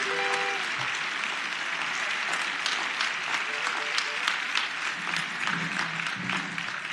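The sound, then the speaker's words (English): Steady applause from an audience fills the whole stretch, a dense crackle of many hands clapping at an even level, with faint voices murmuring underneath. “Come on, let's give them another round of applause.”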